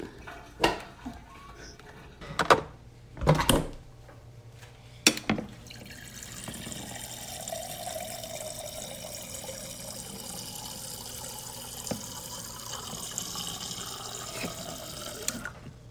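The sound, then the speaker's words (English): A few sharp clinks and clatters of ice being handled, then a tap turns on and water runs steadily and fairly loud, filling a sink or container for several seconds. “Today, it involves Google. and ice and a lot of water.”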